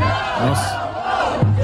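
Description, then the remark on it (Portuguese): A loud crowd of Lula supporters, with drums, chants together in front of a hotel in New York in a steady, continuous roar of massed voices, with a low droning tone running underneath and a short hissing burst partway through. “Realmente é torcida organizada.”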